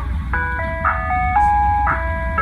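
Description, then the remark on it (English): An ice cream truck coming down the street plays a tinkling jingle, a simple melody of sustained, bell-like tones, fairly loud, over a low rumbling engine and street noise. “I want to take you back to summers of the past. Hopefully not the too distant past. With the ice cream truck.”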